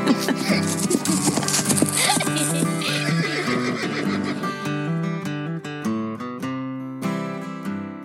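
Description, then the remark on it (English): A horse lets out a loud, wavering whinny in the opening seconds, followed by a run of bright, plucked-sounding tonal notes with no talking. “So I wouldn't say happy trails to the horse anytime soon, because grass will always be cheaper than gas.”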